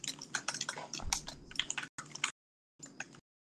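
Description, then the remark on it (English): Rapid computer keyboard typing picked up by a microphone right next to the keyboard: a dense burst of clacky keystrokes for about two seconds, then a short pause and a few more quick taps, loud with no voices. “can your keyboard be any louder? Question mark. No, because my mic is right next to my keyboard.”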